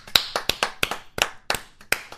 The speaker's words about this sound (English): Let's get a round of applause going, folks.